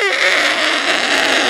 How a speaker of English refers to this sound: That was definitely an elephant. An elephant. That was definitely an elephant. What island has elephants?